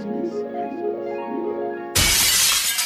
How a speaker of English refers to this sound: And a brick through the window. A brick through the window.